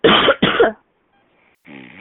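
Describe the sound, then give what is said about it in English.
Two loud coughs in quick succession, harsh and forceful, followed by a short silence and then a brief voiced sound at the end. “Yeah, I know it's a cough.”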